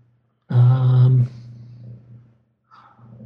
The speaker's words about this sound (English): Is there a cat purring near your... There is, it's very loud. It's not even that close to the microphone.